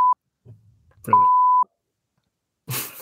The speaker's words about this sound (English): can you like put a sweary beep thing over it? Yeah, I'll put a beep over when we say Harry.